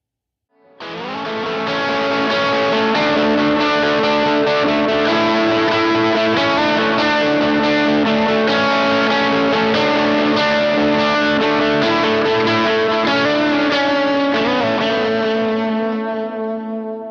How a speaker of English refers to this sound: Now, let's switch over to the Tube Screamer-flavored 1689 side of the E89 and add in some delay and some additional reverb, and see how this thing really works in a lead style context.